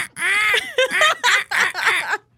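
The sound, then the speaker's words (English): A crow caws loudly, one drawn-out harsh call followed by four shorter raspy caws in quick succession, with no talking. “That's what a crow sounds like.”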